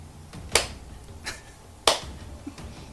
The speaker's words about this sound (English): Slow clap.